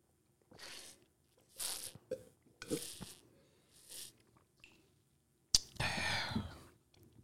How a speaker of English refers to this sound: Nothing like a good on mic water break.